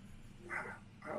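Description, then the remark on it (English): The speaker's female dog, in the room with the speaker, barks twice in quick succession, two short sharp yaps rising above a low background hum, fairly faint. “Your dog is attacking the show.”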